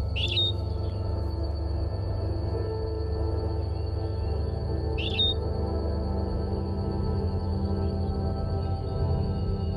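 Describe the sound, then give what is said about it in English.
A small Galapagos finch on the Galapagos Islands gives two short, bright chirping phrases about five seconds apart, heard over a steady low rumble of background noise and a thin, continuous high-pitched whine. “And because of the isolation of the Galapagos Islands, this finch that's singing now has a direct genetic connection to the finches that Darwin heard singing when he was here on the Galapagos Islands in the 1830s.”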